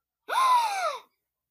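A single sharp, voiced gasp that jumps up in pitch and slides back down over under a second, close and fairly loud, with silence before and after.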